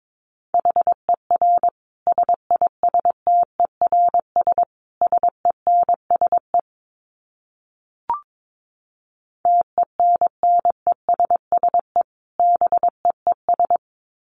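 Fast Morse code at about 22 words per minute: a steady mid-pitched tone keyed into crisp dots and dashes, broken by a pause of several seconds with a single soft click before the sending resumes.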